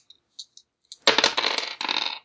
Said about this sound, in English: He's rolling 3 dice to hit you.